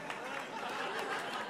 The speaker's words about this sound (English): Appreciative groan from the audience.